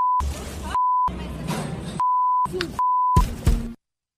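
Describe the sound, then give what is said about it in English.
Steady, high-pitched censor bleeps cut in four times over the F word, alternating with short bursts of loud, agitated voices of young women cursing about Israel. The bleeps sit at the same level as the shouting and stop abruptly near the end. “Every beep you hear is the F word, where these young ladies are saying that as it relates to Israel.”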